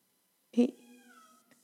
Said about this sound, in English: Does anyone else hear my cat?